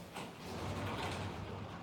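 A sliding door rumbles along its track for a couple of seconds, a steady, fairly loud rolling scrape with no voices.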